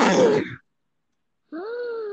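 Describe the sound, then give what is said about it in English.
A voice imitates a monster screech: a short harsh, raspy burst, then about a second of silence, then a sustained wailing cry that slowly rises in pitch. Both parts are loud. “And then the monster, I have like the perfect idea. Oh, yes. That would definitely. There's gonna be a screech.”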